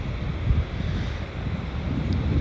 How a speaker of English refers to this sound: Because it would be nice for you to see the ocean and not just hear it in the background.